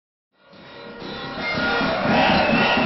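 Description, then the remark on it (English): Hundreds of thousands of protesters in the streets overnight against Benjamin Netanyahu's government and its judicial overhaul, after he sacked defense minister Yoav Gallant: a dense roar of many voices that swells from silence and grows steadily louder, with shouting and chanting blending into a continuous wall of noise. “Hundreds of thousands of protesters took to the streets overnight after Netanyahu sacked his defense minister, Yoav Gallant, for breaking ranks over the reform.”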